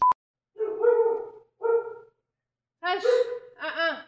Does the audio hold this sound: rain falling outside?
no